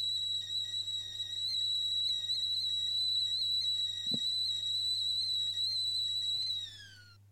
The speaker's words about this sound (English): And we will end with the tea whistle, saying cheers and taking a sip of a cup of tea.